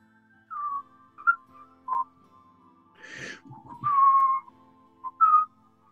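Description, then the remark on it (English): A person, asked to whistle in front of everyone, whistles a short, wavering tune with a series of breathy notes and brief pauses, plus a scratchy rustle midway; no one speaks. “What I want to know, though, is can you right now, in front of everyone, whistle for me?”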